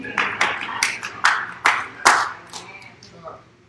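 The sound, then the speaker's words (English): Scattered hand claps from a few people, roughly half a dozen sharp, uneven slaps over a few seconds, with faint murmuring voices underneath before the clapping trails off. “I got a couple claps.”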